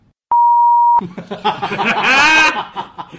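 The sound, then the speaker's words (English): A single loud, steady electronic censor bleep over a swear word, lasting under a second, followed right after by people laughing and chuckling. “Leave that in. Beep it.”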